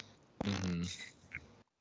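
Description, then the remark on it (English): A single buzzy raspberry blown with the lips, a mouth-made fart noise lasting about a second with a brief sputter trailing off at the end. “And then I can make childish fart noises after all of them.”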